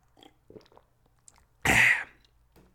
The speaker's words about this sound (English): Quick sip of water. Water break. Quick water break, bros. Water break, boss. Don't mind me, boss.